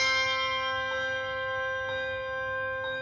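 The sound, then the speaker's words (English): Handbells ring out alone in a steady rhythm, struck about once a second, each bright chime layering over the long, shimmering sustain of the ones before, clear. “Handbells.”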